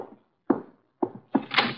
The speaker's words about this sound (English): Archie, the door. Our guests are arriving.